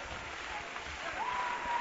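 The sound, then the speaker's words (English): An audience at a religious service claps hands together in rejoicing, a dense, steady patter of many claps blending into a rain-like roar, with a sustained tone entering partway through. “Oh, clap your hands and rejoice, because you can rejoice in the presence of the Lord.”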